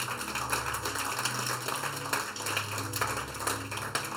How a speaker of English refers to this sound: If you are clapping, you do it better.